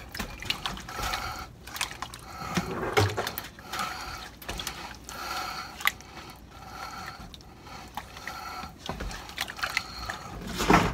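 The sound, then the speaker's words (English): A utensil scrapes and clinks around inside a pot in a steady, repetitive rhythm, with wet sloshing of liquid underneath, moderately loud, with no talking, as a thickening mixture with heavy whipping cream is stirred. “Start stirring. Might need a little more splash of some water or something.”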